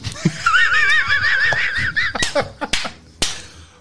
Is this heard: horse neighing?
yes